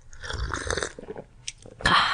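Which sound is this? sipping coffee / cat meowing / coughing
sipping coffee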